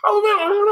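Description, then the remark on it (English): A person's voice does a short, loud imitation of an animal howl, one sustained wavering wail lasting under a second, blending a wolf-like howl with a laughing, hyena-like quality. “this actually seems to be the one that I found the most agreement with, is the sound sound like this, it's this bizarre sound that's the blending of a wolf and a hyena's laugh.”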